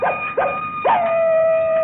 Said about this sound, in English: Coyote, there's more of them critters out on our prairie here than there is people in San Ventura.